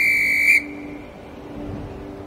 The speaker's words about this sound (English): Up in the clouds, Rainy was whistling for everyone to gather around.